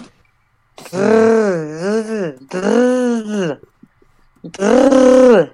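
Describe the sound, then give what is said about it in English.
A person does a Chewie (Chewbacca) impression, imitating a Wookiee roar in three long, warbling, groaning bursts, loud and strained with wavering pitch, separated by short pauses. “do you guys want to hear my Chewie impression?”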